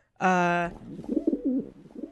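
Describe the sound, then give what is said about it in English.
A short, loud buzzy tone gives way to a run of low, burbling pigeon coos, warbling and rolling at moderate volume. “Sounds like a bubbling cauldron with a pigeon in it.”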